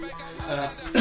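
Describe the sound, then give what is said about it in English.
A brief cough bursts out sharply at the very end, preceded by a short throaty catch, with no speech around it. “I am a coughing beast.”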